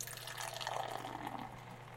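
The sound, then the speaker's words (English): Uinta lager beer streams steadily into a glass for about two seconds, a continuous gurgling pour with bubbly fizz, no voices over it. “I'm gonna pop my top. Oh! My top. Nice. Ooh, it must be winter. And the pour.”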